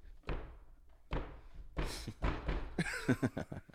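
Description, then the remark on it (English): A rapid series of explosion sound effects, four or five heavy booming blasts a fraction of a second apart, loud, with a brief crackling tail after the last ones. “Season two, again, better, bigger. More explosions. Drop something right there when I do that.”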